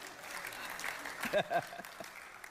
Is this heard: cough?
no